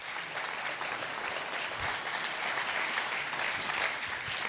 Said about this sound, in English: Let's clap our hands and thank him for it.